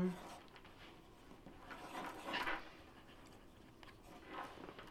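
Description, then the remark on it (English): Quiet scratching of a fountain pen nib gliding over paper as someone writes by hand, coming in a few short bursts of strokes with soft pauses between, faint murmuring voices in the background. “Oh, nice handwriting.”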